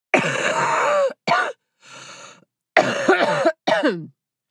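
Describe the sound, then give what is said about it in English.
A sick person coughs in a harsh series of about five bursts, some drawn out with a throaty, groaning voice and one softer, breathier hack in the middle; no talking. “That is how I sound when I cough.”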